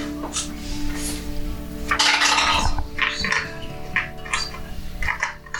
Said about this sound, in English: Sorry, rolling dice.